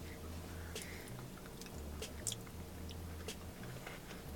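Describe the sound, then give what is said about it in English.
Crunchy chewing of a pumpkin dessert with pie chunks inside, with brief crisp bites scattered through a few seconds, over a low steady hum, with no talking. “Why is it crunchy? Because they have like pie bits inside of it.”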